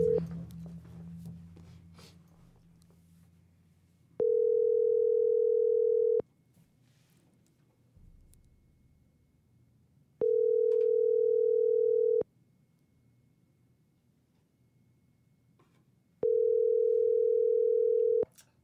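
A phone call's ringback tone, on a call to a security systems company about getting cameras installed, purrs three times, each steady two-second burst followed by a longer silence, loud and clear over a low background hum, with faint muffled noise at the start.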